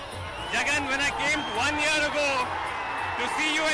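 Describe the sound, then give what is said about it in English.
A rally crowd on the outskirts of Vijayawada cheers and shouts as Jagan's convoy makes its way to the stage. Many voices overlap in a loud, continuous roar with rising and falling whoops, lasting throughout with no single speaker standing out. “As Jagan's convoy makes its way to the stage, the frenzy intensifies.”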